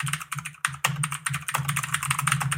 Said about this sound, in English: Stop typing while you talk.